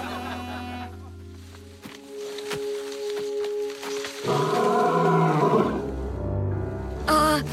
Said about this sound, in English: Tell me that was you doing a really good impression of a lion. Wasn't me. It's coming closer.